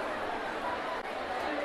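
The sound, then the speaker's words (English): A steady wash of overlapping crowd chatter, many voices blending into a continuous murmur with no single speaker standing out, holding an even level throughout except for one brief dip. “That's ambiance.”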